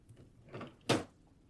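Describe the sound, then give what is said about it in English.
A drawer slides with a soft scrape, then shuts with a sharp, fairly loud thump. The two sounds come in quick succession, and no one speaks. “Nothing in this drawer.”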